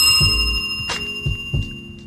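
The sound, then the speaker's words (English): A bell rings with a bright, sustained metallic tone that hangs steadily throughout, while a few dull low thumps and a short burst of noise sound underneath it. “Ring the bell”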